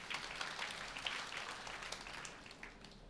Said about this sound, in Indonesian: Tepuk tangan dulu buat Tuhan.